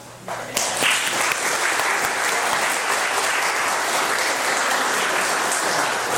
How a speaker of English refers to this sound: I would like to give a round of applause now.